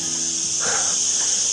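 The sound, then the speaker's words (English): Loud cicadas drone in a steady, high-pitched buzz that fills the whole moment without a break, with only a brief faint murmur beneath it. “And all I have is a huge great peak and trough graph, because I think it's picking up the noise of the cicadas so much that I don't know if you can even hear my voice.”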